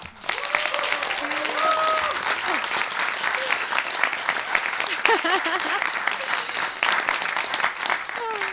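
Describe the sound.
Loud audience applause, a dense steady wash of clapping that holds for several seconds, with scattered cheers and voices rising through it.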